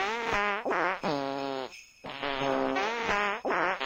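A series of loud, drawn-out fart noises, buzzy and wavering in pitch, come in several back-to-back bursts with a brief pause in the middle, and no talking.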